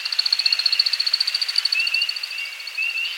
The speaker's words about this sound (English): As the sun sets on a northern Midwest forest, we hear a most peculiar sound. It's an American woodcock aloft on a courtship flight.